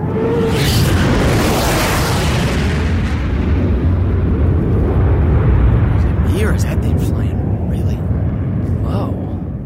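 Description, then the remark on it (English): A fighter jet roars loudly overhead, a dense, thundering rumble that fills the whole stretch and slowly loses its hiss as it passes, with voices faintly beneath it. “Holy shit, it's a fighter plane.”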